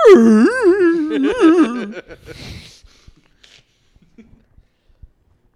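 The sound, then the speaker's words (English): A person imitates the howling whine of Rory, a dog, as heard through the car's open windows after her first pup cup: a loud, wavering, high-pitched wail lasting about two seconds, rising and dipping in pitch, then trailing into a breathy sigh followed by a few faint clicks. “I think her exact reaction before I got back to the car, I could hear her with the windows down, was.”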